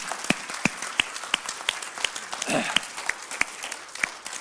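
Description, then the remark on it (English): An audience in a church applauds, a dense wash of clapping punctuated by strong, evenly spaced claps in a steady rhythm, with a brief murmur of voices partway through. “We give an applause. Let's applaud for these folks that smooth tonight.”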